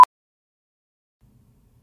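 A single short, sharp electronic beep at a steady pitch sounds right at the start, loud and clipped, followed by near silence with only a few faint low rumbles.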